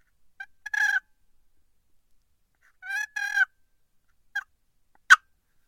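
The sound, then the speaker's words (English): Soft, short turkey purrs made on a wooden box call by barely moving the handle with the slightest pressure near the bottom, a few brief rolling bursts separated by pauses, quiet with no talking. “Just a little purrs, just a couple itty-bitty little tiny purrs like that.”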